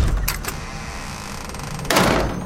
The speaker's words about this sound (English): Listen, I'm just gonna turn this broiler on and make us some chicken nuggets.